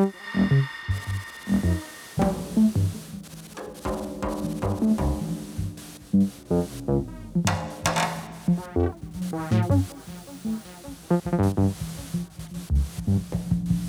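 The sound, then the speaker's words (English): Experimental electronic sounds with hissing bursts of white noise cutting across buzzing, throbbing tones, the noisy smears repeating in an echoing, delayed pattern with no voices present. “A lot of white noise, I think, coming from Raoul.”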